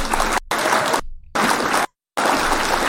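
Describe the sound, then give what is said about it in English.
Dense, steady audience applause from many hands, clapping for the speaker's mother, comes in loud bursts, cut by abrupt moments of complete silence before the clapping resumes. No one speaks. “Hit the clap for my mom too while you doing that.”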